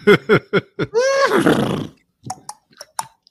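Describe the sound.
A person imitates a horse, giving several short snorting pulses and then a long, wavering, descending whinny, followed by a few faint clicking tongue sounds. Fairly loud, with no speech.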